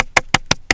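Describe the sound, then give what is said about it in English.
Four quick hand claps in a steady, even rhythm, each a sharp, bright smack with no talking around them. “Clap.”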